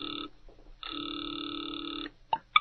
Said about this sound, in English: He has just dialed a number. Now he waits, the ringing of a distant phone in his ears.